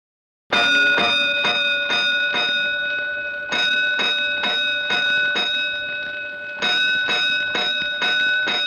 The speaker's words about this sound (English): Five bells. Stand by all stations. Attention, all districts. A five-alarm fire. Five bells. Move in immediately.